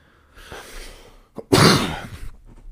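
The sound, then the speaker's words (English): A single loud, harsh cough, preceded by a breathy inhale and a brief catch in the throat, with no talking around it. “Excuse my cough.”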